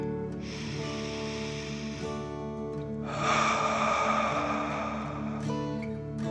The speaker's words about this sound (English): Again, breathe in through your nose and out through your mouth, pretending you're breathing fire. Deep breath in and out.